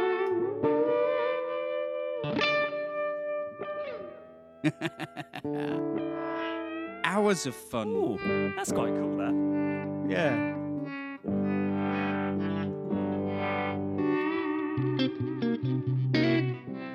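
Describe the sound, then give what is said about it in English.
A distorted electric guitar plays sustained chords while its large tone knob is swept back and forth as a wah-wah, giving a vocal wah-wah sweep. Brief spoken comments appear between the phrases. “basically, using the tone as a wah-wah, and because it's a great big honking tone knob, you know, you can really sort of, you can go mad at it.”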